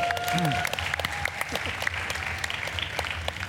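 audience applause

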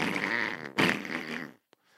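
fart

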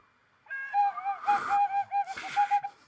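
person whistling

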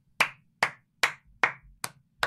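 hands clapping

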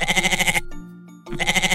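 goat bleating

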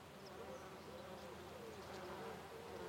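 bees buzzing

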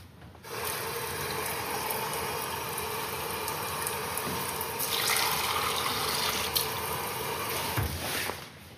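tap water running

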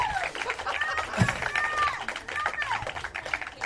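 audience applause

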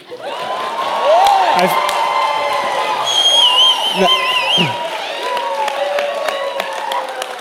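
applause and cheering

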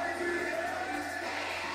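concert crowd cheering

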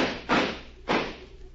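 gunshot

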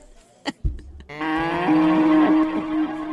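cow mooing

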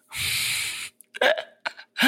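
french bulldog snoring

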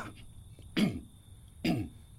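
man coughing

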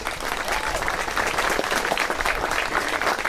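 class clapping

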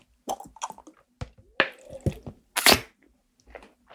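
drinking water

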